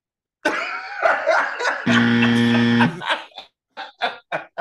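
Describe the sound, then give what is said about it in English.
A voice imitates a game-show buzzer, in place of a real buzzer, with a loud, harsh, steady nasal drone lasting about a second, preceded by raspy throaty vocal noises and followed by several short, choppy bursts like laughter. “We don't hit have the buzzer.”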